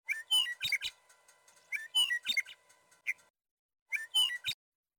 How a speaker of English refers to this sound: So that's a meadowlark, but do you want more specific than that? If you can be more specific. Yes. So that's a Western meadowlark.